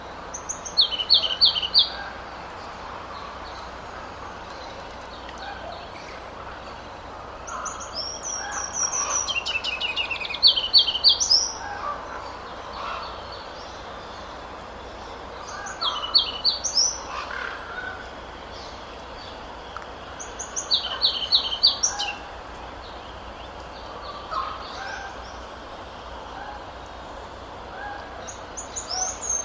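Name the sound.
ruby-crowned kinglet song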